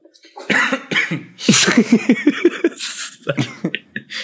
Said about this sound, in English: Yeah, I have a cough coming from my chest now.